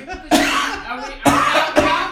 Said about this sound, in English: I had coughed and it sounded like words.